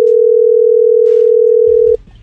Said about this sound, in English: We're going to dial and see if Jeremy picks up or if he's out flying his drone.